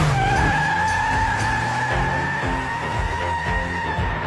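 Car tires screech in a long, loud squeal as a Rolls Royce speeds off, the high whine holding steady over a low rumbling engine, with no talking.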